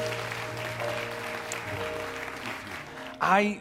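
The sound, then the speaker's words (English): A church audience claps steadily in the morning to rejoice in the Lord, a dense wash of many hands over sustained organ-like musical tones, before a voice rises loudly at the very end. “Clap your hands and rejoice in the Lord this morning.”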